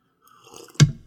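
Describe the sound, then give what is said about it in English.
A quick sip of tea: a soft, faint slurp that ends in one sharp, wet swallow-like click. No one is talking. “Excuse me, I'm just sipping some tea.”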